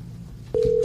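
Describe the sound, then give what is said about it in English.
A phone on speakerphone starts a call: after a brief low background murmur, a steady, fairly loud dialing tone sounds and holds to the end. “Turn up the phone.”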